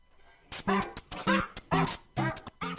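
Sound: dog barking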